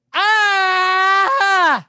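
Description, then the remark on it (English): A man lets out a single loud, sustained primal scream lasting nearly two seconds, wavering briefly near the end before the pitch drops away as it trails off. “It was a primal scream and a concerning noise to my neighbors upstairs.”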